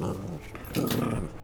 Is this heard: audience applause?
no